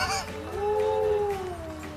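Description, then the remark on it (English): A timber wolf at the Colorado Wolf and Wildlife Center lets out one long, steady howl that swells slightly in pitch and then slowly sinks, over a low background hum. “Timber wolf is that says Colorado Wolf and Wildlife Center.”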